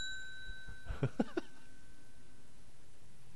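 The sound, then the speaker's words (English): A small bell rings with a bright, sustained metallic tone that slowly fades away, while a few short throaty bursts, like brief coughs or chuckles, sound over it. “I've renamed this to the Bell of Distaste.”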